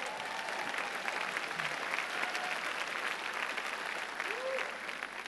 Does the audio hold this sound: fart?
no